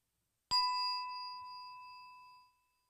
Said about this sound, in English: So let's get into meditation, and I'm going to ring the bell for us to start.